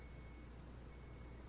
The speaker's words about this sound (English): That's the coffee maker shutting off. Do you think they heard that mm-hmm. beeping?